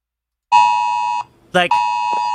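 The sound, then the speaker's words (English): A harsh, loud emergency alert tone from a phone, an emergency broadcast system alert like an Amber Alert, blares in two long steady bursts, broken briefly by a short warbling sweep, piercing and jarring. “They sent that, you know, that emergency broadcast system thing that you have on your phone?”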